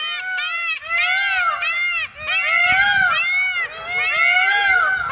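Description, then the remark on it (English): Male birds crying out in mating season, a chorus of loud, strained wailing calls that rise and fall, overlapping almost without a break, shrill and baby-like, for about five seconds with no talking. “One woman says that the males cry out, particularly mating season.”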